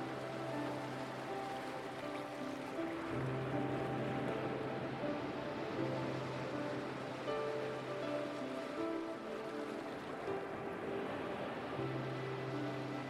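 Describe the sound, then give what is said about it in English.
A continuous wash of ocean surf rolls on steadily, blended with a soft, sustained low musical drone; no voices, just an even, calm bed of water noise throughout. “With each breath, feel a deeper connection to the ocean and its incredible energy.”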